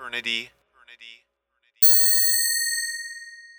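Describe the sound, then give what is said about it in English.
A single bright ding from a phone announcing new mail rings out and slowly fades, following a brief stretch of someone talking. “I've got mail on my phone.”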